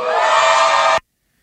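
A loud, dense burst of crowd cheering lasts about a second, then cuts off abruptly into silence. No one speaks.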